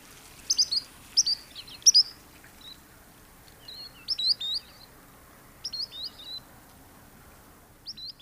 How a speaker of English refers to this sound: This evening, we're profiling a little sandpiper called the spotted sandpiper, and this species usually vocalizes from the water's edge or when being flushed. So let's listen to the call of a spotted sandpiper here.